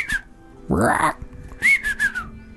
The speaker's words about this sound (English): It sounds like it's an animal sound, definitely. Is it just a croak or a... Oh, what the heck? And as you say that, you can hear answering sounds as something seems to whistle.